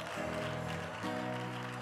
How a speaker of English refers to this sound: Come on, clap those hands and praise the name of the Lord.